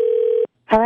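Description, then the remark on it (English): A steady electronic ringback tone hums through the line for about half a second during an outgoing call to the seller about returning an artificial Christmas tree, then cuts off; after a short silence a voice begins speaking. “So obviously, I'm calling, Christmas is done, but I need to return my fake tree.”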